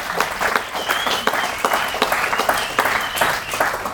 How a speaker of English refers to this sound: Again, I know we just got a round of applause.